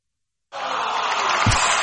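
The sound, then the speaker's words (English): A crowd bursts into applause after a brief silence, a dense, steady wash of clapping and murmuring that holds at full loudness to the end. “You applauded.”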